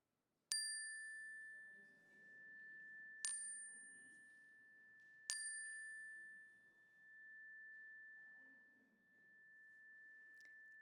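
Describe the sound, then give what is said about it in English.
A bright chime is struck three times in the first five seconds during a prayer, each strike ringing out in a long, sustained shimmering tone, with a faint low murmur of voices underneath as people speak aloud names of people and places. “I invite you to call them to mind now and speak them aloud as the chime rings so that we can hold them with you.”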